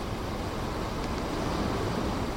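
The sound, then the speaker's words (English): Rain falling steadily, a dense, even hiss spread across low rumble and high patter, holding constant loudness throughout with no voices over it. “Is that the rain again?”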